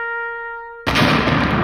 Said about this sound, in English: I think it's only right that we give, what was his name again? Mogwai? Magawa. For every year of service, let's give him a 5-explosion salute, all right?